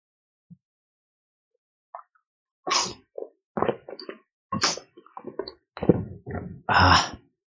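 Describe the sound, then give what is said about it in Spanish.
Someone drinks water from a glass: a few faint clicks, then a series of short, wet gulps and swallows with breathy puffs between them, ending in a longer, airy exhale. No talking. “Pero antes de empezar, voy a tomar un poco de agua.”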